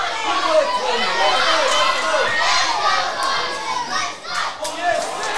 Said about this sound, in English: Crowd trying to lift their teams. A few of the Tigers fans getting behind their team. Great to hear.